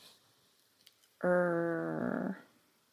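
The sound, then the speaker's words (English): A single loud growl, about a second long and steady, rolling like a drawn-out "rrr", likely a human voice imitating a dog, with near-silence before and after. “Sometimes I make that sound when I growl.”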